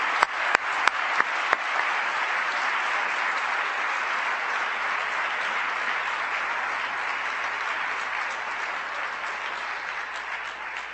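Sustained audience applause for the students and their parents, teachers and mentors after prizes are awarded. Dense, steady clapping holds an even loudness for about eleven seconds, with a few sharper individual claps standing out at the start and no talking over it.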